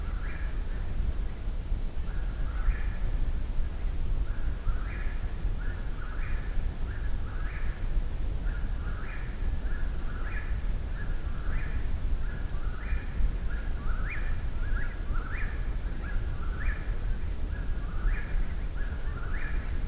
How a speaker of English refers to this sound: Probably one of the most repetitive bird songs there is, the most constant.